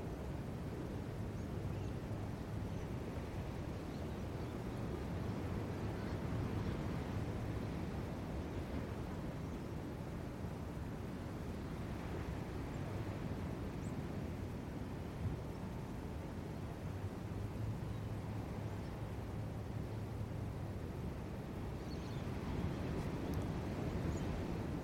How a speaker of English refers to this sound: Maybe hearing some of the distant sounds of the birds, their morning song, the distant waves of the ocean.